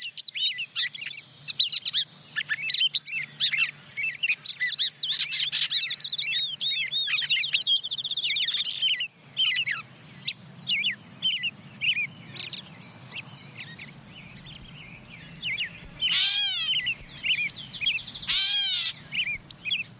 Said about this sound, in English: So now who else has joined in here? Yeah, the wood peewee comes in, followed by the song sparrow and gray catbird. They start to pile on pretty quickly about this point.